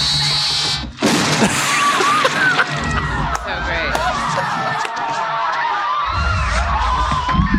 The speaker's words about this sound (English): So his head just blows up, yeah.